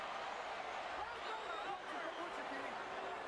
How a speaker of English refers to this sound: The crowd is going crazy. Everybody yelling stuff.